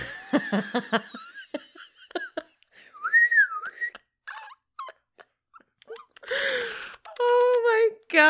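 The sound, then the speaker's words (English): A man whistles to call a pet squirrel down from a treetop: short, warbling whistles rise and fall in a few separate bursts, fairly loud, mixed with scattered clicks and breathy vocal noises between them. “He said he just pulled up and whistled.”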